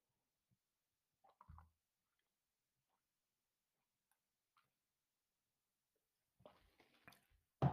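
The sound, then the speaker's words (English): Someone quietly sips water: a few soft, wet clicks and a swallow in near silence, then a brief cluster of louder slurping, clinking sounds at the end. “Let's take a sip of water first.”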